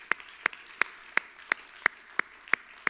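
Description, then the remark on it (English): Steady, rhythmic hand clapping to the Lord keeps an even beat, about three claps per second, sharp and clear with a faint murmur underneath and no voices. “Somebody put your hands together and clap to the Lord.”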